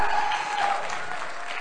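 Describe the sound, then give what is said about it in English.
An audience claps in praise of God, a dense, sustained burst of applause, with a raised voice or two of praise faintly mixed in the crowd noise throughout. “Give God a clap of praise. Come on, shout, shout, shout.”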